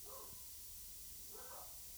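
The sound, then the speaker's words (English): Two barks from the neighbors' pit bulls, one early and one a bit over a second later, faint over a low steady background hum, with no one talking. “So we got new neighbors and they have dogs that like to bark.”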